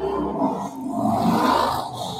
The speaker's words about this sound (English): Oh, that was loud car. Did you just get eaten by something? That guy is in a rush. On a Sunday morning, too. Jeez. Yeah, that was a car, motorcycle. I don't know what that was.